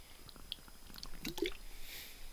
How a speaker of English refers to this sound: Drinking some liquid death here, some good canned water, but anyway.